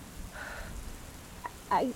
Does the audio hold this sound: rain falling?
yes